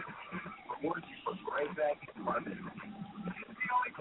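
A television plays in the background, its muffled, tinny voices talking continuously with no clear words, sounding like broadcast dialogue rather than people in the room.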